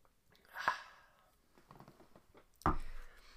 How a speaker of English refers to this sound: I prefer water, typically with a little bit of Himalayan sea salt. And won't you join me now for the simultaneous sip? And it happens now. Go.